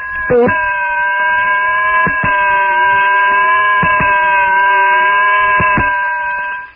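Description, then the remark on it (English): Tarzan's loud, eerie jungle shriek as he starts toward a cannibal crowd to rescue, held for several seconds, a steady high wailing cry with rich harmonics, broken by a few brief catches, and no talking. “Tarzan weird, unearthly shriek.”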